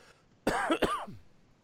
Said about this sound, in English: Hang on, I got a cough.